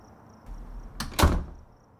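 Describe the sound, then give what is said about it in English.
A front door opens and shuts, two quick sharp knocks of movement about a quarter second apart, the second louder, over a faint steady hum and no voices. “Should we lock the front door so they can't run?”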